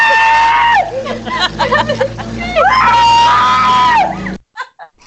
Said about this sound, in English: No, she loves the scream.